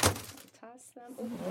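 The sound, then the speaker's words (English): A short, crisp crunch of fortune cookies being cracked open, a quick burst of brittle snapping at the start, followed by people talking. “So we have our fortune cookies, and we toss our cookies.”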